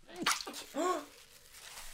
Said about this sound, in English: I sneezed already.